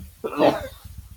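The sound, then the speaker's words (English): A single abrupt sneeze, put down to allergies, bursts out, short and breathy with a sharp peak, then fades into a low, quiet murmur of someone talking. “Bless you.”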